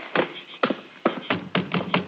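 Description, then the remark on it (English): Someone raps firmly on the wooden front door of a shack, about seven hollow knocks in two uneven bursts, with no voices. “Let's try the front door.”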